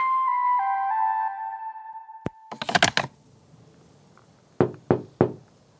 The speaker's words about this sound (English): That my ringtone.